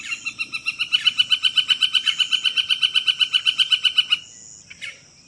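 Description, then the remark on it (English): A northern flicker's yucker call: a rapid, even series of about twenty loud, sharp notes lasting roughly four seconds, clear, then stopping abruptly with a faint trailing note. “And just one more time, let me play that flicker again.”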